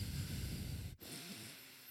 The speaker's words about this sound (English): A lot of breathing. … is a heavy breather.